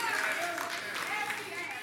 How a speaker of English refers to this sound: Y'all clap now, but this is the same way you called to love one another.